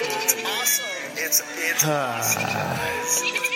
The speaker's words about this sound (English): Was that a goat? There's a goat.